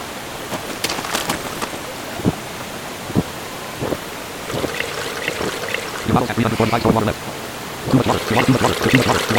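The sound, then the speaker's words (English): A few sharp clinks and knocks from handling a pot, then water pours from an opened water bottle into it, a steady splashing gurgle that runs for the last few seconds. “Pot. Left hand. Open water bottle.”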